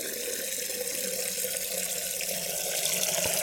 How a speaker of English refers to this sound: Now the kettle is getting filled. Let's have a listen. We need enough for three noodles here, so I'm going to keep filling it all the way to the top.